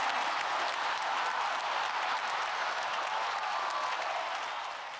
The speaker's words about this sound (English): Round of applause.